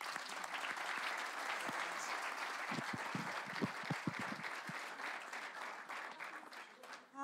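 Sustained audience applause for the panelists at the end of an evening panel discussion, a dense steady wash of many hands clapping at an even loudness for about seven seconds, with a few sharper individual claps standing out midway before it begins to thin at the end.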